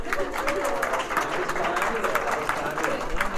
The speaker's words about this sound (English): We don't run anywhere quite yet because we have to say thank you to you, everybody. So let's give … a round of applause, everybody.